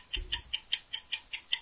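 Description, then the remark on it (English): A clock ticks rapidly and steadily, about eight crisp, bright ticks in quick even succession, with no voices and a brief low thump near the start. “Clock. Clock sound.”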